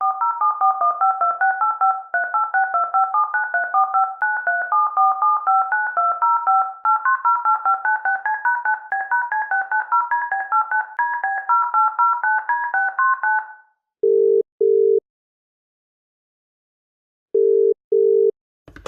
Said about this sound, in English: Yeah, maybe we should give him a call. Well, let's give it a shot. And let's see if this number still works.